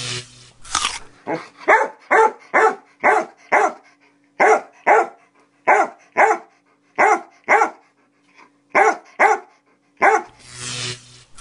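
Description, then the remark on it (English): The dog Mayer barks over and over, a long run of loud, sharp barks in a steady rhythm with brief pauses between bursts and no one speaking. “But earlier on, he recorded a little message for you”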